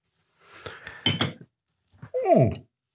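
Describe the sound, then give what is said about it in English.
Glasses clink together in a toast in a few quick taps, followed shortly by a second bright ringing contact that fades out. “Supposed to take a sip after a is cheers.”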